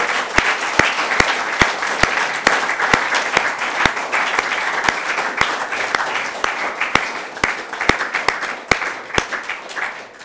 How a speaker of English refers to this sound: I think everyone should applaud themselves for this weekend. So, please, I want to applaud you.